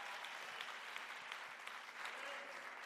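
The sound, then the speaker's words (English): Sustained applause from an audience, a dense wash of many hands clapping steadily at an even volume for a few seconds, with no voices standing out above it. “Yeah, give Jesus a round of applause.”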